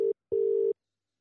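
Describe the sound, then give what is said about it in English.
A phone line's ringing tone heard from the caller's end: a brief steady electronic buzz, a short pause, then a longer buzz, followed by silence. Clear and fairly loud, with no voices. “It's ringing.”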